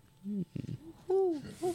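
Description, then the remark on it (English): A voice imitates an owl, giving several short hooting calls: a low hoot, a choppy burst, then a longer rising-and-falling hoot and one more brief call. “Okay, you hear an owl on the top of the tree.”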